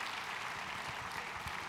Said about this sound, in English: And I think we ought to give applause to our Gideons and our Gideon International.